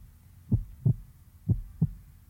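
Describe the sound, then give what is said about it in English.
A slow, steady heartbeat: two pairs of low, muffled lub-dub thumps, moderately loud over a quiet background hum, with no voices. “All starts with your heartbeat.”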